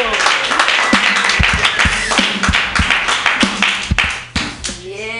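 An audience claps steadily, a dense wash of many hands with sharp individual slaps standing out, holding fairly loud for several seconds before thinning slightly at the end.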